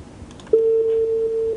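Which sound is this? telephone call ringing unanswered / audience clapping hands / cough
telephone call ringing unanswered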